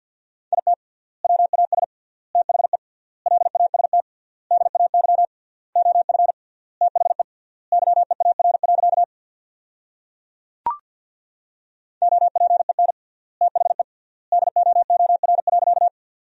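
Rapid Morse code tones sending sentences built from the 300 most common words, with triple word spacing, on a single steady mid-pitched beep, keyed in quick bursts of dots and dashes at about 50 words per minute, with one sharp click during a pause in the middle.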